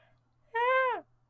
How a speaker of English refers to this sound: You okay? I was yawning, sorry.